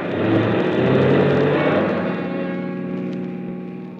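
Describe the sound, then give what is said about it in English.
A car engine revs up as the vehicle pulls back onto the road and drives away, a loud, steady rumble that eases slightly toward the end. No one speaks. “After I got the car back onto the road again, I felt like a fool.”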